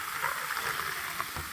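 Fizzing of a carbonated cider drink made with apple brandy, triple sec and sherry in a glass: a steady, crackling hiss of popping bubbles that keeps an even level throughout, with no voices.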